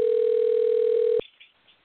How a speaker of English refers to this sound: Answer the phone. I talked to him about an hour ago, so I know he's there. He's at Lake Charles.